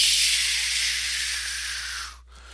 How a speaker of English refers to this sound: Here's me pumping the vacuum. Shh, shh, shh. You hear us talking, and then it goes silent. And then at the end, here's me releasing the vacuum.